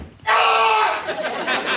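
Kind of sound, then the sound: human body sound, man screaming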